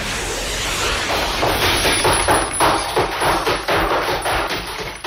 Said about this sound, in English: Fucking skateboard going wild out there. Wheel slide.